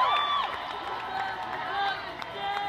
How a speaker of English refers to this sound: And they all scream and cheer for it. This is a rally in New York.